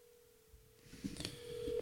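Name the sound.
telephone dialing and ringing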